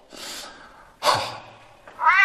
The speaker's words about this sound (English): What was that? Oh, it's only the cat. Hello, Tiddles.